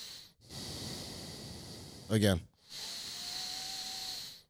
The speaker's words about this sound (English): You get better air when you breathe in through your nose, and you don't have to breathe in as much as you breathe in with your mouth. I understand that. Okay, both of you, give me the nose breathing.